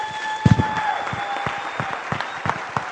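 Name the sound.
audience applause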